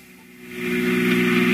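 A car engine hums steadily and grows louder over a second or so, a droning mid-pitched tone of a car speeding along Old Mill Road, a single-lane dirt road past the Gowanda Cemetery, on a Sunday evening.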